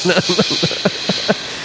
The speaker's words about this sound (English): Jesus, usually that woman only comes in here and kicks the chairs, but she's vacuuming.